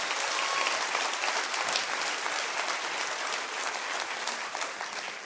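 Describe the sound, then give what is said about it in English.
Sustained applause from a large crowd during a sermon, dense and steady for several seconds, with even clapping that fades slightly toward the end. “Oh, you can clap bigger than that.”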